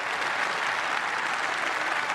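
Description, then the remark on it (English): Steady applause from a crowd, dense and continuous clapping at an even, fairly loud level with no voices rising above it, sustained throughout without fading. “I think they just clap it.”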